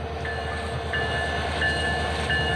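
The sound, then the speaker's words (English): An Alaska Railroad passenger train rolls in to its monthly winter stop at the new depot location in Wasilla, Alaska, with a steady low rumble, while thin, high brake squeals come and go over the heavy mechanical noise. No one speaks. “An Alaska Railroad passenger train made its usual monthly winter stop in Wasilla, but this time about three quarters of a mile earlier.”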